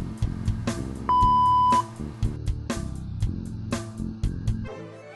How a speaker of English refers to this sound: We're sorry. The person you are trying to reach is not available. Please leave your message after the beep.